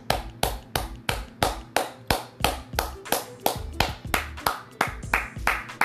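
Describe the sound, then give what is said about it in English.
Steady hand clapping for Mike Vrabel, roughly fifteen sharp claps in a brisk even rhythm, fairly loud, with no talking over it. “Let me clap it up for Mike Vrabel.”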